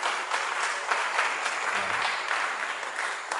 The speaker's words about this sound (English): Clap for them as they come. Oh, go ahead and clap for them. Go ahead and clap for them.